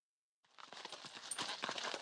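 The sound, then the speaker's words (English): Hooves of horses and mules carrying men and weapons to battle clip-clop in a quick, busy rhythm, several animals moving together on hard ground after a brief silence, with no voices. “Horses and mules carried men and weapons to battle.”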